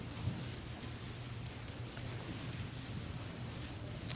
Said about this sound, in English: I love to hear the rustling of Bible pages.